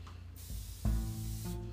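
A fabric freshener is sprayed on a couch in two or three hissing bursts, with a steady low hum running underneath and no one speaking.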